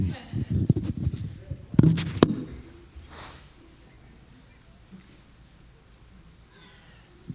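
Someone blows their nose into a handkerchief: a couple of sharp, loud, noisy bursts followed by a softer, breathy blow, then quiet fabric rustling and faint shuffling.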